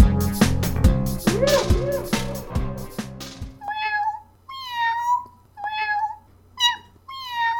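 A short burst of music ends abruptly, then a cat meows four or five times in quick succession, close and fairly loud, each cry rising and falling with brief pauses between.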